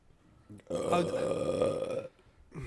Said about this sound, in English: I have a burp stuck and it won't come out. I feel like I've said that like nine times.